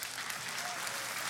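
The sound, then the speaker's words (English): A church audience applauds for the youths in a dense, steady wash of many hands clapping at once, with no single claps standing out and no pause. “Yes, praise God, whoever's clapping for the youths.”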